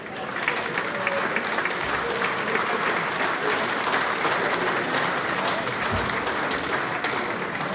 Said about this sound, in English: Big round of applause, please, and welcome back, Howard Pritchard.